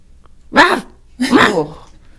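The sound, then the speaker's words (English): A person imitates a dog with two loud barking sounds, the second a little longer, separated by a short pause and followed by near silence. “Someone asked me to crawl around and bark like a dog one time. Let me hear your bark.”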